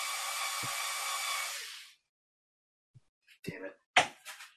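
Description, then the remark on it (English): A power drill whirs steadily at a loud, even pitch for about two seconds, then cuts off abruptly. After a short silence come a few brief, sharp bursts of sound. “Got to go to a bigger drill.”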